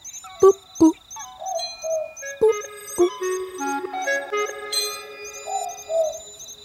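A Boobook owl, an Australian owl, gives a clear two-note hoot, then a few more soft hoots follow, over a backdrop of ringing, chime-like tones and sustained notes.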